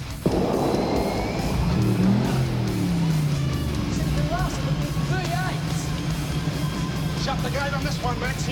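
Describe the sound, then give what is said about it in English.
A race car's 351 engine roars loudly and continuously on a track, its pitch swooping up and down as it passes, over a dense wash of background noise and indistinct voices. “Just listen to 351 work.”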